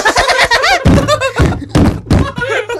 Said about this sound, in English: Sorry for banging the table. I'm sorry.